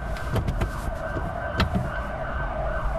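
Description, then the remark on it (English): Steady city traffic rumble heard from inside a Tesla with the roof off on a street in central London on a very cold December winter morning, with a faint siren-like tone held in the background and a few sharp clicks and knocks. No one speaks. “So this is just before Christmas, a very cold winter's morning in December in central London with the roof off a Tesla.”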